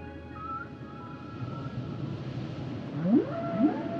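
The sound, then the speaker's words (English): A recording of whale song played from a CD, with long low moans and rising, sweeping calls over a steady rumbling undersea wash, swelling into two louder upward-gliding cries near the end. No voices. “Whale song, John. Isn't it relaxing?”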